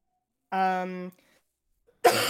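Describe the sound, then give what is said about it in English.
A fairly loud cough: a sustained voiced throaty sound, a brief pause, then a sharp, breathy burst at the end. “Just get that cough out of the way now.”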